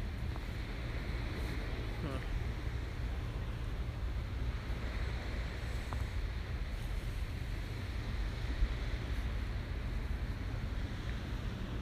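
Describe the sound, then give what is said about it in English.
Ocean waves wash steadily against the shore in a continuous, fairly loud roar with deep low rumble, the surf blending into one unbroken hiss rather than distinct separate breaks. “I love the sound of the waves.”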